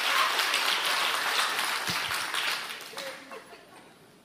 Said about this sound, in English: I got one person clapping. I'll take it.